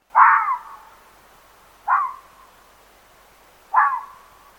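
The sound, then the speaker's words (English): Three harsh, high-pitched screaming calls from a red fox during courtship, evenly spaced about two seconds apart. Each starts loud and rasping, then trails off quickly, with silence between them. “These barks and screams are eerie as we do not hear them often, so few of us are prepared to readily identify the sounds, and they can sound like a human baby in distress.”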